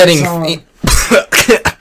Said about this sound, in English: I haven't even lit up yet. Are we all coughing at the same time?